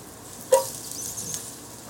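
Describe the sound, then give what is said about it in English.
Chopped garlic and onions sizzle in a pot, a steady soft crackle with one sharp pop near the start and a few lighter ticks after, fairly quiet, no talking. “You can hear it starting to pop and sizzle.”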